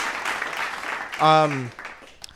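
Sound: clap sound effect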